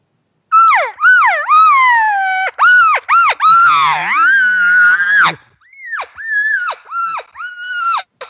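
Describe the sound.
Series of whiny, high-pitched cow calls made with a call or by voice, imitating a cow being hooked and horned by an aggressive bull as she tries to get away, wavering and rising and falling in pitch, loud and insistent, with a longer drawn-out bawl in the middle and shorter calls after.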